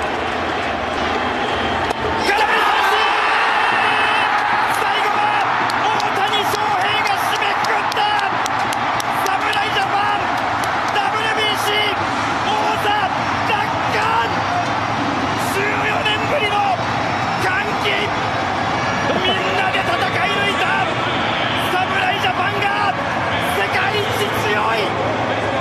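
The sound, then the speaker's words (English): A huge baseball stadium crowd roars and cheers nonstop for the whole stretch, loud and dense, as Japan wins the World Baseball Classic, with a Japanese TV broadcaster's voice talking over the din. “why do they have more crowd noise than FS1 if the game was on FS1?”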